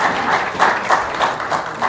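A short, steady burst of audience applause, many hands clapping together in a dense, even patter at a moderate level, with no voices over it.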